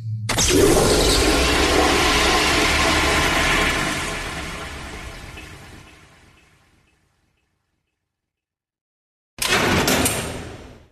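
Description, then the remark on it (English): A magic outhouse door shuts, then a loud rushing whoosh of departure roars for several seconds and slowly fades to silence before another sudden burst of rushing noise cuts in near the end. “there, the door is open. In we go. A magic outhouse.”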